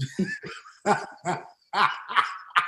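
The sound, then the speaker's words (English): A dog barks repeatedly in a quick series of about seven or eight sharp, yappy barks, loud, with no one talking. “You heard the dog.”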